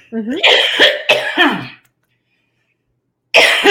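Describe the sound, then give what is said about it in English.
A few harsh coughs and throat clearing in quick succession, followed by nearly two seconds of silence and then another loud, rough cough burst. “I know you can like, let me cough before I choke out here.”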